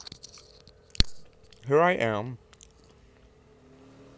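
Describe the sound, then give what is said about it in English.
Crackly mouth noises of someone chewing pretzels, with one sharp crunch, then a voice says a short phrase before the chewing fades to quiet. “I'm sorry, these pretzels are so good. Give me a second.”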